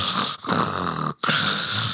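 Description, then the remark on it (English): A voice imitates snoring with three rough, rasping snores in a steady rhythm, each broken by a brief gasp of silence, loud with no other talk. “Permission to do some voice acting of please, snoring.”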